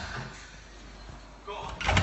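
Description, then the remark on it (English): Police smash in a house door in the UK with a loud, heavy crash near the end, after a stretch of rough background noise and muffled, indistinct voices. “Cops actually smashing through someone's door because someone heard that there was a party going on in his house.”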